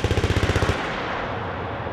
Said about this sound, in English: The best part about our job is actually firing these weapons. It's a lot of fun.